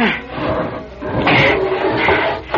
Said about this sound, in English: Wait, I can barricade the door. If I can move a chair against the door...